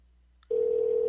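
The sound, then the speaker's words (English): A phone line's ringing tone on an outgoing call: a short faint blip, then a steady, loud, continuous low electronic tone that holds to the end. No one speaks. “Oh, you got to dial it first. Okay, he could answer at any time. I hear it ringing.”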